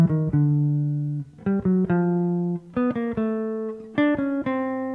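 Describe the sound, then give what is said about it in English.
Clean plucked guitar plays a rising arpeggio where each held chord tone is approached by two quick notes from below, four short groups in a steady, unhurried rhythm with no talking. “So I was just ending up on each of the arpeggio tones, but starting it from two notes from below.”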